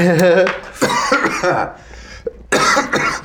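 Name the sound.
man coughing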